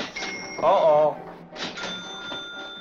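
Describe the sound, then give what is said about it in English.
A small bell rings in a bar with a bright, sustained metallic tone that lingers, while murmuring voices and background noise continue underneath. “Every time you hear a bell rings, it means that some angel's just got his wings.”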